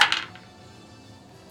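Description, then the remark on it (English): A ten-sided die clatters briefly, two or three quick hard clicks in the first moment, then the sound dies away into quiet. “I literally have a dice tower, so I don't have to do this.”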